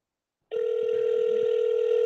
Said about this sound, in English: Well, let me just call him and let him know. Sit tight, folks. Calling him on the phone.